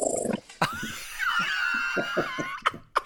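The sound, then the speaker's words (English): A small dog growls in short, rough rumbling bursts, with a thin high-pitched whine over the middle and a couple of sharp sniffs or snorts near the end, as two small dogs, Dolly and Daisy, meet and Daisy sniffs and licks at Dolly. “There's a little bit of a growl going on there, isn't there?”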